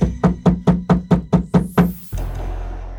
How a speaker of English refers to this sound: but she was stopped by a heavy knocking at the door.